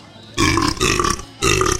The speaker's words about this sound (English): Or burps.